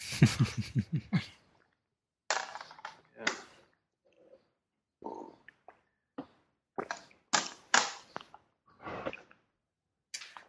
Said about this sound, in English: Oh, I'm rolling the wrong thing there. Oh, it doesn't matter. That's fine. I'll grab that one. The dice roll high, and you meant to roll the dice that roll low.